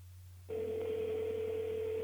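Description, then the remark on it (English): After a brief low hum, a steady electronic phone ringback tone starts and holds for the rest of the moment, clear, as if heard through a phone speaker. “Cause the funny thing, when I call him, he don't pick the phone up. So we're gonna find out live.”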